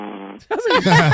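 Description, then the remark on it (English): A low, buzzy, fart-like drone from a caller in Rhode Island comes through a thin, phone-filtered line for a moment, then stops and gives way to louder voices talking and reacting. “Sounds like he's farting.”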